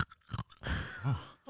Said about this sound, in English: What are you munching on? Ice.